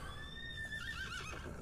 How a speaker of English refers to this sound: There's the horse. Sure. Let's give F's in the chat for the horse, because this is probably going to be turned into glue after this fight.